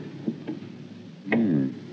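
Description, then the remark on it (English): Two small metallic clicks as the latch of Palmer's door at the top of a long flight of stairs on the second floor is tried, then a sharper clack as it gives way, followed by a brief creak of the door swinging open, fairly quiet. “Try the door.”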